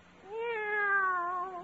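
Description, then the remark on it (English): A single drawn-out meow from the cat Minerva, clear, rising then slowly falling in pitch over about a second and a half, heard alone with no talking. “Take our cat Minerva.”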